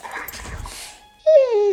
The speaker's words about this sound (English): To some, this might sound like a typical family dog. But at Dog Chow, we know that for a veteran suffering from PTSD, this could be the sound of life-saving therapy.